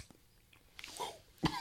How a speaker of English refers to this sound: Boy, you coughed on the Jim Beam.